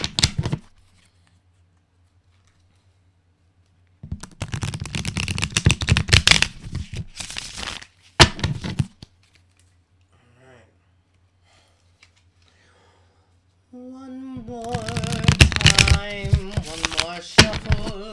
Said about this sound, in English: Shuffling the Shrine of the Black Medusa deck.